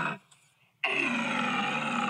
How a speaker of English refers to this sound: That sounds like metal. Yeah. Metal. Oh, yeah. That's roaring, metal. Dude. That's more like a lion. Man. Yeah, play that again. That's a great sound. It's a roar.